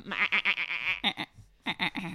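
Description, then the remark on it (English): A human voice imitates a goat's bleat, a quavering, nasal 'mehhh' with rapid pulsing, delivered in two fairly loud bursts separated by a short pause. “I accidentally make a goat sound”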